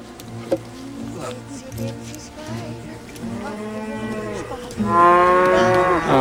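A live cow moos repeatedly in long, drawn-out bellows as it is fed to a huge crocodile, building to a louder, strained moo near the end, with a faint insect-like buzz in the background.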